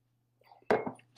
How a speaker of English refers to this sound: So, Romans chapter 3, verse 19, I need a cup of coffee and a little bit of a sip first.